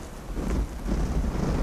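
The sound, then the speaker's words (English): Strong wind buffets a microphone outdoors on a hike, a steady low roar with swelling gusts that rise and fall over a couple of seconds, loud with no voices. “I think we're gonna turn round because it's a bit too windy.”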